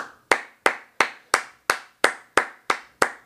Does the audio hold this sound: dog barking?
no